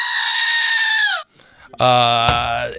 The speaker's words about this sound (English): Anyway, but we will break that rule because this screaming goat is stinking awesome.